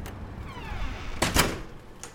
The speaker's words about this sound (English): You can come in and close the door.